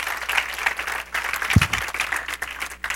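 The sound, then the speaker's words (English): An audience claps their hands in praise to the Lord, a dense, steady patter of many hands, fairly loud and continuous with no voices standing out. “I'll give the Lord a hand clap of praise.”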